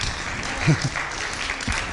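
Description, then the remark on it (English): An audience at a Christmas service applauds when invited to clap, a dense, steady wash of many hands clapping at moderate loudness, with a brief low voice-like swell rising out of it midway. “You can clap.”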